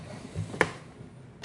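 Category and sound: dice being rolled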